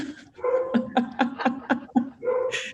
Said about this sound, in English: Sorry if you can hear my neighbor's dog.